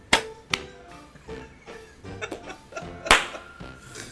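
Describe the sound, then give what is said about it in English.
Sharp hand claps made as a sync clap for audio: two quick ones in a row, then another loud clap a few seconds later, with some quieter murmuring and laughter in between. “Oh my gosh, how many times are you gonna clap, dude?”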